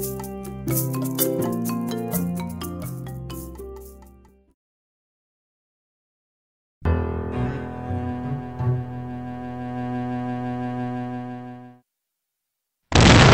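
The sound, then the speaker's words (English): A sudden, loud explosive boom bursts in at the very end, following stretches of tonal, musical-sounding effects separated by a pause of silence. “From an instantaneous explosion to the slow rusting of iron, the rates at which different chemical reactions proceed can vary tremendously.”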